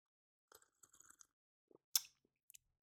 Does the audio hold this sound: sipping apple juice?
yes